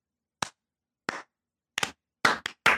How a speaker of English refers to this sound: Standing slow clap. Standing slow clap. I love it.